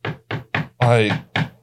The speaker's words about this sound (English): No, don't you start the knocking this early in the morning. No. No way. Is that a faulty pipe? What's going on?